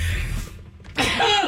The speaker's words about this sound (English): Hang on, I have to sneeze.